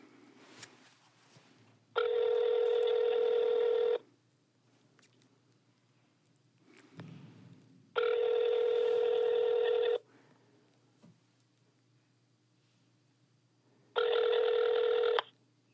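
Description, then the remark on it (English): A phone ringback tone plays through a speakerphone held up to a microphone: three steady two-second rings spaced about four seconds apart, clear and fairly loud, with faint room noise between them and no talking. “Just put it on speaker and hold it up to the mic.”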